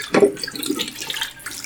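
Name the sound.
running water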